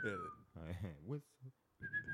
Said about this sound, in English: I always whistle.